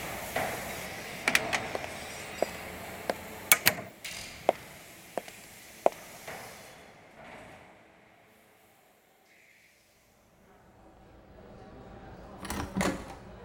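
A door shuts with a short, solid thud near the end, after a run of sharp, irregular clicks and knocks and a quiet stretch of room tone.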